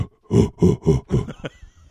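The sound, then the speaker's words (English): A person imitates a monkey like those from Planet of the Apes with four rough, guttural grunts in quick rhythmic succession, loud and low-pitched, followed by a short higher squeal and a fading breathy tail. “I sound that's like a fucking monkey from Planet of the Apes.”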